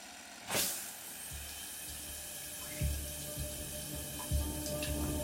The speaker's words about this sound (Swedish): Du stannar kvar i duschen längre än vad du behöver.